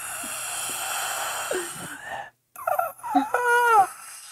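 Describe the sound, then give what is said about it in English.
Raspy, strained breathing: harsh, noisy breaths, a brief pause, then a rougher gasp ending in a pained, groaning wheeze. “Like, you peek inside and you start to hear something raspy, breath almost.”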